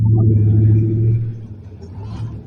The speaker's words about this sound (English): Yeah, there goes your cartel delivery bus.